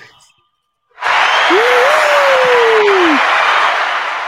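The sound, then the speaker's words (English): A slow-clap sound effect: after a short pause, loud, dense crowd applause breaks out and holds steady, with one voice letting out a long, sliding whoop over the clapping. “I really didn't get the slow clap, button where it's like.”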